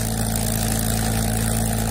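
A Merlin aircraft piston engine running steadily, with a loud, continuous throbbing drone and deep low rumble that holds an even level throughout, with no voices.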